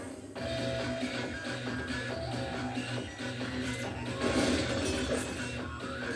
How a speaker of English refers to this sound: This film's really loud, isn't it? Just yeah, really explosions and techno. Things being smashed. People shouting. It's just really loud.